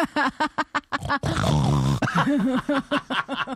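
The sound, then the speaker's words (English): A person imitates a pig or javelina grunting: a quick series of short, rhythmic nasal grunts, then a long harsh rasping snort, followed by more choppy squealing grunts. “I'm going to go with like a pig or like a javelina.”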